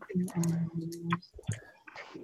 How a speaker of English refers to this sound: Now, does everyone have dice? I have a dice rolling app. Okay. Roll two dice. Hold on.